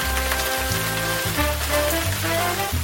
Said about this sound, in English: Of course, it was the sound of rain.